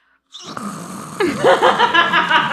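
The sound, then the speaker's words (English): A voice imitates loud snoring, a raspy, rumbling drawn-out snore that grows stronger after a brief start, with no talking. “Yes, so there were two snoring on my left and right.”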